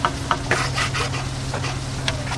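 A file rasps against the cherry wood sides of a guitar body being hand-finished at the Martin Guitar Company factory in Nazareth, Pennsylvania, in a series of uneven, gritty strokes, with a steady low machine hum running underneath and no talking.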